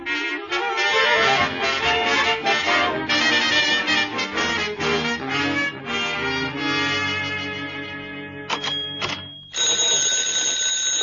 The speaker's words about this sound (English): I'm just come back, but already my phone is ringing.